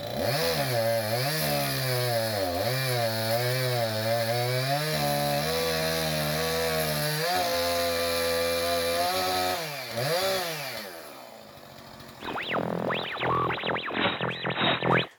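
A chainsaw is pulled to start and its chain runs; the engine roars loudly and steadily, its buzzing pitch rising and falling as it revs, then dies down before a harsher, higher whining burst of revving returns at the end.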